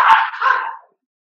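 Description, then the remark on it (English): A neighbor's dog standing by the door gives one sharp bark that trails into a short whining, whimpering tone before fading out, followed by silence. “Your dog sounds like they're up and down the stairs. Eating people.”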